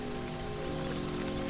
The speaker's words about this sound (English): Is it raining? Just a little sprinkle. Nothing to worry about.